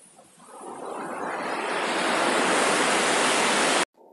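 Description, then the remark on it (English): A broad rush of surf builds steadily over a few seconds, swelling into a loud, steady wash of water breaking on shore before cutting off abruptly. No voices are heard. “Let her wash back into the sea.”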